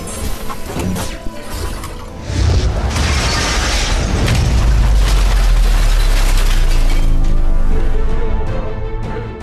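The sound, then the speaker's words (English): A full-size robot lands heavily on a glass window with a booming crunch. The glass shatters and the robot falls through to the floor below, shards scattering and tinkling while a deep rumble swells and lingers for several seconds, loud. “And your weight goes straight through the glass, and you fall into the floor below.”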